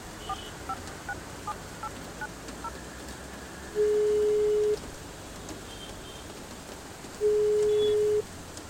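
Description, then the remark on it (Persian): A phone call placed outside a house in the rain: a few soft, quick dialing beeps give way to two long, steady ringback tones, each lasting about a second with a pause between, over a constant hiss of rain. No one speaks. “بذار یه زنگ بهش بزنم.”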